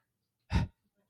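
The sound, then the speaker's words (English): A single loud, heavy breath, a quick forceful exhale lasting a fraction of a second, with near silence before and after. “There's a lot of breathing hugely.”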